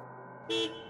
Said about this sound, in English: By the time the car horn blared to signal his father's arrival, Barker was already up and on his feet, sweeping towards the door.